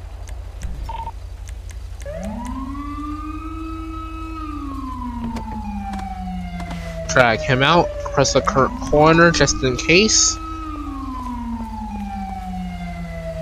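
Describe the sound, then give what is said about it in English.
An approaching ambulance siren wails in long, slow rising and falling sweeps, steady and fairly loud throughout, while people speak briefly over it midway. “Let the ambulance get here first to check and see if he's okay.”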